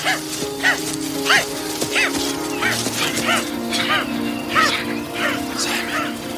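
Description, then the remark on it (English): A man's voice imitates a dog, mimicking the character Simon acting like a dog, letting out a quick series of high, whining yelps and short barks, roughly one or two each second, steady over a faint background murmur. “yells, Simon, you're not a dog.”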